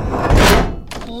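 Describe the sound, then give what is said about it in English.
A heavy vault door slams shut with one loud, booming impact as someone is locked inside alone, followed by a low rumble and a faint metallic ring that fades as it settles. “I'm outside the door of the vault, about to lock you in alone.”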